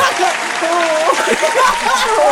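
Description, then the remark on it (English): Steady, dense hand clapping fills the whole stretch, loud and continuous like applause, with voices talking and calling out over it. “I was trying to clap for you for being a good man.”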